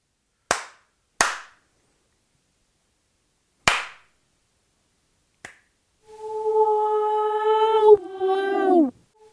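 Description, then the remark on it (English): Three sharp, loud hand slaps ring out: two in quick succession, then a third after a pause. A faint tap follows, then a sustained, wavering tonal wail that bends downward. “So that was two confident slaps. A third one because I was like, you know what?”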